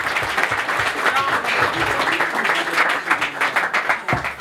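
A crowd breaks into steady applause, many hands clapping densely and continuously for several seconds, with a few voices faintly mixed in.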